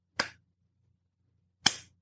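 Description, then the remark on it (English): Two sharp, bright, forced hand claps about a second and a half apart, each a crisp snap with a short decay, separated by near silence with no voices. “You can tell it's not a genuine clap.”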